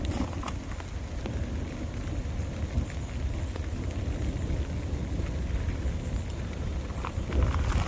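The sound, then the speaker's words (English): Steady rain falls outdoors by a lake, a continuous dense hiss with a low rumbling undertone, moderately loud and unbroken, with no voices. “Well, right, I can't hang around because it's raining, but there's all that grey, horrible cloud over there.”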